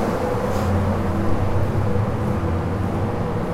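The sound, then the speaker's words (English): A loud generator that keeps a sea fort running, heard from a dark corridor on the fort's lower level, runs steadily: a constant low mechanical drone with humming tones and a rough rumble that never changes in level. No voices are heard. “As you can hear, I am getting nearer and nearer the generator, which is very loud and keeps the fort running.”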